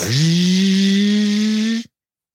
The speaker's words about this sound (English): Hey, we need a vacuum sound effect. Every time you mention abortion, you just hear a vacuum go on.